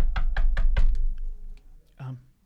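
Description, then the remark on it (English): Four firm, evenly spaced, loud knocks on a door by a man going door to door, followed by a short pause and a faint vocal sound near the end. “Should I get the door?”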